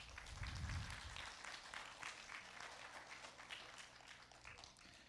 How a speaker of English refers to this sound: You can clap.